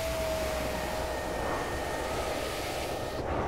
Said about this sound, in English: It's ice cold. There seems to be a little bit of a blizzard storm. Shut up. I'm going to roll down the window, and I'm going to point the mic out so you can hear it.